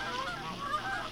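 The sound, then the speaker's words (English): A flock of eight geese honking continuously, several overlapping nasal calls at moderate loudness with no talking. “How many geese are there?”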